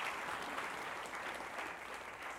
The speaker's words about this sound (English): Let's have another round of applause for the drama team. That was great.